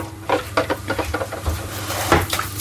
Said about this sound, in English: I'm in the kitchen doing the dishes.